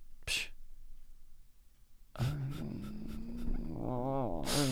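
A dog whines and yowls in a drawn-out, wavering cry that rises and falls for a couple of seconds, after a short sharp snort-like burst and a brief quiet stretch.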